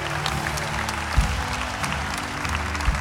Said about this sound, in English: Come on, keep clapping, church.